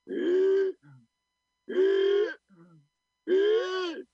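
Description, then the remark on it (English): Three harsh, wheezy groaning gasps from an old wizard, each strained and raspy and followed by a short, low rattling breath, evenly spaced, like a voice imitating bronchial gasping. “As soon as he heard that harsh bronchial gasping”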